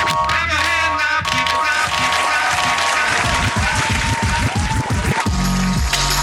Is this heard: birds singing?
no